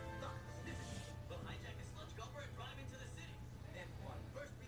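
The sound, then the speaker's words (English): A garbage truck rumbles steadily outside, its deep engine drone continuous throughout while people talk over it. “Look at the garbage truck.”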